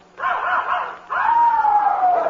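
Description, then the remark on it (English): A puppy named Tiger lets out two loud, drawn-out barking cries, the second longer and sliding downward in pitch, with no one talking. “I mean, he's only a pup.”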